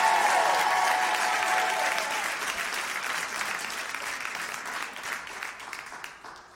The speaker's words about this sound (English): Come on, let's give ourselves a hand and give the Lord a hand for the ability. Come on. If you're going to clap, clap in a Pentecostal fashion.